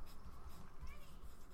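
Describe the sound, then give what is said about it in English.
A pencil scratches steadily across paper in short, continuous strokes, fairly quiet, with a soft rasping texture and no voices. “Pencil.”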